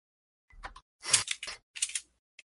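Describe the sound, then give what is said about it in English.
Scissors snip several times in quick, uneven succession with crisp, dry metallic cuts, then give a final small click after a short pause. They are being used to undo the stitches sewing someone's mouth shut. No one speaks. “as Einar is like taking a pair of scissors and trying to undo the like sewing shut of someone's mouth.”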